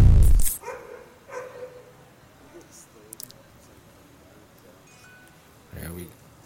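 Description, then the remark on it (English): A dog barks in a courtyard a few times with long gaps between, the sharp barks ringing a little as if outdoors, over a steady low background hum after a loud thump at the start. “It's like they're all in the one spot, one courtyard. We got dogs.”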